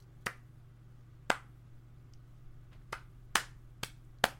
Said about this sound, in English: And it's nothing like the music they're listening to. And he's just clapping to a random beat. So I don't know what music they're playing.